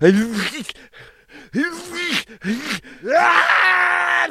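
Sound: sneeze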